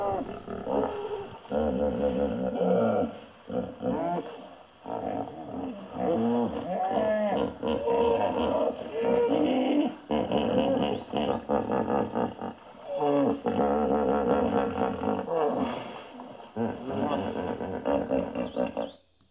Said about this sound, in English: In the distance, wallowing in the mudflats, incredibly loud came the growling, roaring, squeaking, wheezing, grunting sounds and deep-throated basso laugh of the hippos.